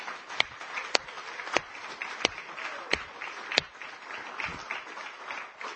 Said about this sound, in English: I think God deserves a clap for that, don't you?